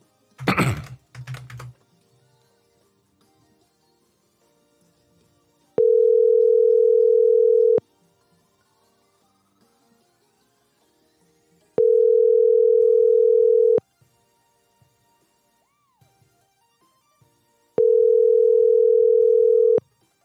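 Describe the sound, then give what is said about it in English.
A few quick clicks, then a phone line ringing out: three long, steady electronic ring tones, each about two seconds, separated by long silent pauses while the call goes unanswered. “Let's get this bitch to answer the phone first.”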